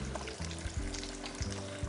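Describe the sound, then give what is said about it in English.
Chicken deep frying in oil, a steady, dense crackling sizzle that runs unbroken throughout, with a low, humming drone underneath and no voices. “But trust me, you guys, it's the same oil cooking in the same way.”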